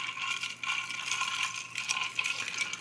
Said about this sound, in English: I'm going to stir mine. Yeah, stir it up. Stir it up.